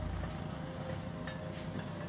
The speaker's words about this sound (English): Yeah, bro, this looks just runaway like train, man. Empty train car with an empty caboose slowly moves along the track, even though no one is driving it.